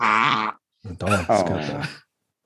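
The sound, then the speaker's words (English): A chihuahua makes throaty grunting noises: one rough, sustained grunt, a short pause, then a longer run of raspy, snorting grunts, fairly loud and with no talking. “Is he got something stuck in his throat? It's a chihuahua thing.”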